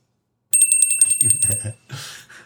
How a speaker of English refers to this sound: Uh-oh. Where's your wine bell? The wine bell is here. Oh my goodness. Do I have to ring your wine bell?